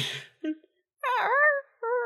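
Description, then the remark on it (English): A voice imitates a little tiny dragon head popping out of a bag with a high, cat-like whine: a short breathy noise, a brief mew, then a longer wavering whine and a final shorter one, fairly loud. “It still sounds like a cat.”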